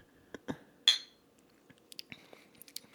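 Two glasses of deep amber, hoppy Old Irving beer clink together once in a toast, a bright ringing tap, surrounded by a few softer knocks and small handling clicks.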